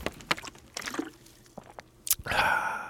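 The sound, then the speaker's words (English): Close-up wet mouth sounds of someone drinking water from a bottle: a few quiet swallows and liquid clicks, then a sharp gulp followed by a loud, breathy exhale right against the microphone. “Now, when you get a drink of water, I'll get right up on my microphone so you can hear this.”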